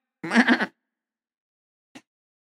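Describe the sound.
A person imitates a lamb's bleat with one wavering, nasal baa lasting about half a second, fairly loud, then a brief faint click before silence.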